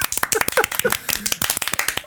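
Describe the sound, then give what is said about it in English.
A short burst of applause from a few people, with quick, sharp, uneven claps running steadily for about two seconds and faint voices mixed in underneath. “Can we just give a fucking terrified applause?”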